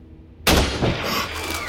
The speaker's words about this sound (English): My daily hike was nearly over when I heard a rifle shot, followed by a gut-wrenching scream.